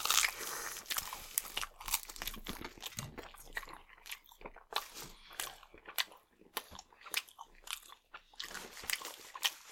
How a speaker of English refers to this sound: Knocking in some garlic bread real quick.